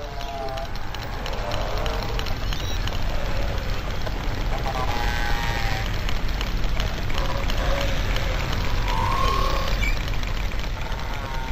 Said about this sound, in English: I don't know how these sounds are harvested, how you end up with sounds like this. So what is the process in collecting sounds like the sound we just heard of the bowhead whale?